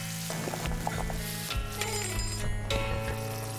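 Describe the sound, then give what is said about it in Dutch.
A pan of cherry mixture simmers and sizzles, with steady bubbling and popping crackles filling the background and occasional faint clinks, no voices present. “Als de inhoud van de pan ondertussen is gaan koken... geen paniek, dit hoort zo. Gewoon lekker laten pruttelen.”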